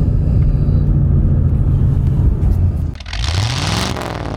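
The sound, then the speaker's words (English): A sports car engine rumbles loudly, then briefly dips before revving up sharply as it downshifts, the pitch sweeping upward in a throaty roar. “And listen to that sound, just downshifting.”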